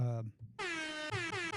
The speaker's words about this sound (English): There we go. That's you always need the air horn. Yes, that's when's a good time for the air horn to be played?